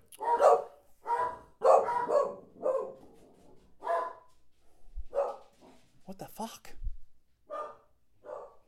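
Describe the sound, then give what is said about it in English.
Dogs bark frantically in rapid, repeated loud bursts, then ease off while a person exclaims briefly and a few more barks follow. “The dogs are going nuts.”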